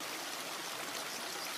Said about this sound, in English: Just listen to the water. It'll calm your mind.